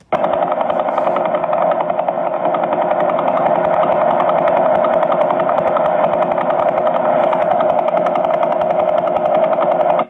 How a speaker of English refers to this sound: So here's what a pulsar sounds like. You can think to yourself, is this intelligent signal, Morse code, what?